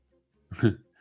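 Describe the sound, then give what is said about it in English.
A single short, sharp sneeze bursts out, a quick voiced blast that fades within a fraction of a second, with quiet before and after. “Bless you.”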